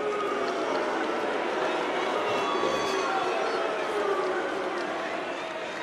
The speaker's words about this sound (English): half of them are booing anyway